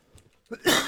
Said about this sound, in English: had a cough.